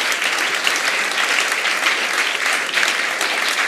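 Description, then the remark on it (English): A church crowd claps steadily to celebrate the faithfulness of God, a dense wash of hands beating at an even loudness for several seconds with no pauses or voices breaking through. “So can we have one more round of applause just to celebrate the faithfulness of God, the generosity of God.”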